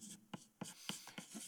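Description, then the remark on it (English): Pen or pencil scratching across paper in short, quick strokes, a series of soft scrapes and taps with no voices. “And so what I want you to do off here someplace on your paper, whatever you're writing on, is I want you to write the word vision.”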